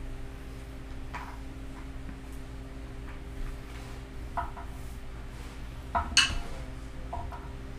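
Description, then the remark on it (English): Dice clatter in a few short bursts of light clicking and rattling, the busiest flurry coming late, all over a steady low electrical hum. “Roll some dice.”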